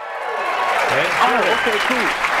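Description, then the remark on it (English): A studio audience claps loudly and steadily, with excited whoops and cheers rising over the dense applause for a couple of seconds. “But even after playing in two Super Bowls, he had a problem believing that our cheering crowd was legit.”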